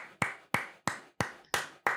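Six sharp, evenly spaced claps ring out at a steady pace, each crisp hit trailing off briefly before the next, with no voices.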